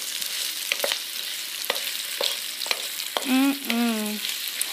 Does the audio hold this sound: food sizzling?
yes